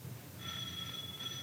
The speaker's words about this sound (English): Oh, there's the doorbell